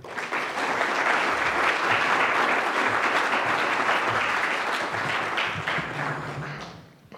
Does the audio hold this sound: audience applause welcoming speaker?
yes